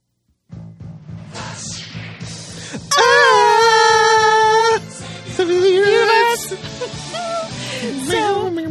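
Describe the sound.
Voices loudly scream-sing a film theme song in a wailing melody of long, strained notes, rising and breaking between phrases, over a low, steady droning pulse in the background.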